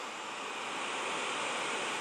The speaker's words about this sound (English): The ocean.